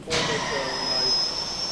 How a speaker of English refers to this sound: So now the telescope will settle. You can see the feet are now settling down on the concrete again. And then after a while, we'll just release the air and the telescope will settle in position.